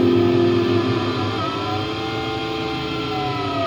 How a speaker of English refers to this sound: I don't really play much with the Moog guitar into you know, distortion, but it's pretty cool.